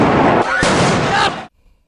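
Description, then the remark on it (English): A sharp flashbang grenade blast, thrown by police officers, cracks out amid a loud, chaotic wash of noise and shouting voices, then everything cuts off abruptly into near silence. From NBC news coverage. “They see us running because they're going to throw more flashbangs.”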